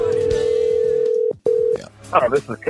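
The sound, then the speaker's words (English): A phone line's ringback tone buzzes steadily, cuts off briefly, starts again, then breaks off as a voice begins talking over faint background music; a phone call to Cal Weatherly goes unanswered, his voicemail box not set up. “Brother Cal not answering a Brother Cadillac's phone call.”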